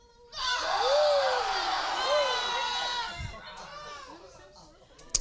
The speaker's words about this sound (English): The entire city, yeah, that's how they sounded. The entire city was thrown into an uproar. Whoa. Give me your best uproar.